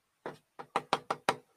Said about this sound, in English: It's like he's just using a little knocker on the door there.